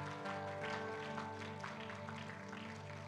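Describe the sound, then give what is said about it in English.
An audience claps hands, a dense, continuous patter of many hands over a sustained organ-like tone, with steady loudness throughout. “Would you clap your hands once again?”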